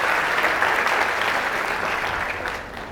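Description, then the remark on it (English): A short burst of scattered applause from a small group, steady dense clapping that holds for a few seconds and then thins out slightly at the end, with no voices over it. “Thank you so much for a small little clap.”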